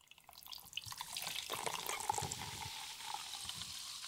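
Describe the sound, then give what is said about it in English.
Squirt citrus soda is poured steadily from a can into a cocktail glass with lime juice for a paloma, a continuous hissing, splashing stream with fizzy crackle, fairly quiet, lasting a few seconds with no talking. “And then you go in with your can of good old-fashioned squirt soda. And then give that a nice little pour.”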